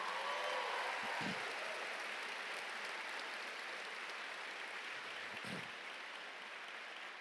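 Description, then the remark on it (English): A crowd gives a clap offering to Jesus, hundreds of hands clapping in a dense, sustained wash of sound without letting up, with no voices standing out. “If you love Jesus, would you give him a clap offering today?”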